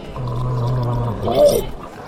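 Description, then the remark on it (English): Lemonade poured down a pipe gurgles and burbles over a steady low hum, the bubbling swelling into a louder warbling surge midway before tapering off. “Give me some of your lemonade. Gee, Rover Kratz, here. I'm gonna pour it down.”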